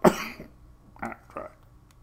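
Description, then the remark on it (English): A single sharp cough, followed a moment later by two short, rough throat-clearing rasps, with no talking. “Cough up something or other.”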